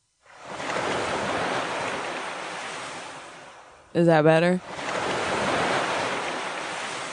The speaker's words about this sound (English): Sounds like waves. Yeah, I'm in Malibu.